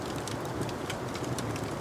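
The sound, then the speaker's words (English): Steady rain patters down outside a tavern in an even, continuous hiss, with faint scattered ticks of drops over a soft low rumble and no voices. “You feel a fire at your back and hear rain outside.”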